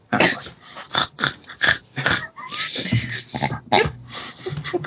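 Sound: burp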